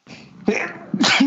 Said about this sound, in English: Gross. Sorry, sneezed.